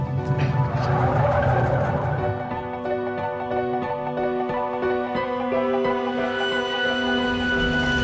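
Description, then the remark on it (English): A car roars along at speed, engine whining steadily and loudly, with a harsh burst of tire skid noise at the start. No voices are heard. “Turn around, quick.”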